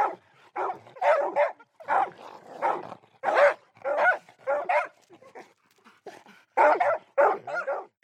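A dog barks repeatedly in quick, uneven bursts, a dozen or so sharp barks and yips, with brief pauses between clusters and no one talking.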